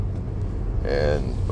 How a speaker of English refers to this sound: And I'm in the car, and I'm on my way to Starbucks.